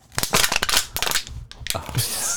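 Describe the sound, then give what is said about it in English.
An aluminum Liquid Death mountain water can is crushed with a burst of sharp metallic crinkles and pops, several quick crackles over about two seconds ending in a sustained scraping crunch. “I love it when you crush those cans.”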